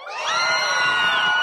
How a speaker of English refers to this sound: Who likes movies? Oh, let's have a quick cheer off, okay? Movies better than books? Cheer.